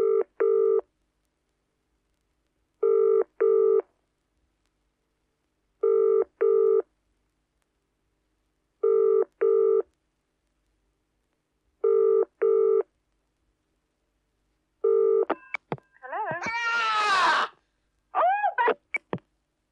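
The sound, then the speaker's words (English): A telephone ringing tone repeats its double buzz six times at steady intervals as a call is placed, then cuts off into a brief noisy clatter as the phone is thrown down, followed by short chirpy tones. No one speaks. “But obviously the idea is I ring her back within about 5 minutes. Now, will she pick up the phone?”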